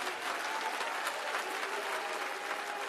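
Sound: audience clapping hands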